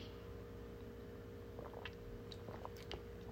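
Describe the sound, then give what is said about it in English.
A few quick, wet sipping and swallowing noises of someone drinking a Monster energy drink, clustered in the second half over a steady low hum, with no talking. “Let me have a sip of my Monster, y'all.”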